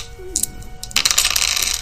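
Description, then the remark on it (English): Dice rattle and clatter across a tabletop, rolled for damage as two six-sided dice, starting with a couple of light clicks and then a dense burst of hard tumbling that keeps going to the end. No one speaks. “New dice, Raph? No. I don't have new dice.”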